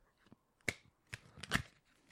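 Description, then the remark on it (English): Playing cards being shuffled: a handful of short, crisp papery snaps and flicks at an uneven pace, quiet, with no one talking. “You realize that the true nature of shuffling cards is that they sound like a fart.”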